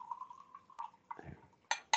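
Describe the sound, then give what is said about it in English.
A short pour of water into a glass: a thin, steady trickle with a faint ringing tone, then a few sharp glassy clinks near the end. No one speaks. “And because I want to keep my wits about me, I'll put a bit of water in this to get some flavor.”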